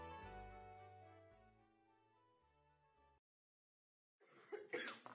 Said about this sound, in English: That's it, start with a cough, lovely. Sorry. He's cough central.